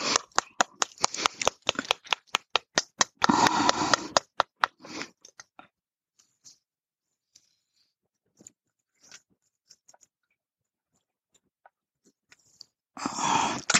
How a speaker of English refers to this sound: it's a book that's got a plastic cover on it, so she's licking up the water that I did get all wiped up.